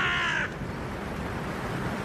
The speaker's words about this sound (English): Stupid crows. It's the same one every time too.